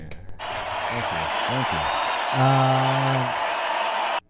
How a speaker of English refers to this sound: A round of applause for that one.